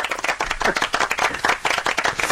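A crowd applauds steadily, dense overlapping handclaps at a fairly loud level with no voices heard over them.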